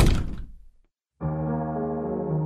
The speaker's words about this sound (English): I sat in stunned silence as I heard the bathroom door close.